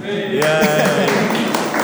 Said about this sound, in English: Yay! It's just we've never had an audience before, no. So we quite like this applause thing. It's good.